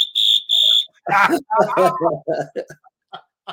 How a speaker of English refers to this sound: You get the Brazilian whistle, baby.